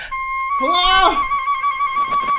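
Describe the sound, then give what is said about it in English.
A single flute note is held steadily for a couple of seconds, breathy and bright, while a short wavering, meow-like cry rises and falls over it near the start. “We should have told you to move away from the end of the flute.”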